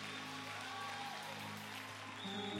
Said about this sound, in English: Come on, let's give the Lord a hand clap of praise for this great man.